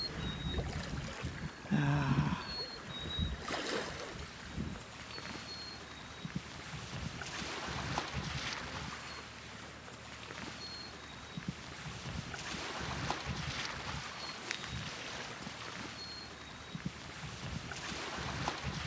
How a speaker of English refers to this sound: And this lovely private little harbor. It's wonderful. Big granite boulders. Yes. And it's wonderful to be this close to the water and hear it. Hear it just lapping away.